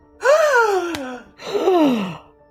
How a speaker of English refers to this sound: Everybody gasp.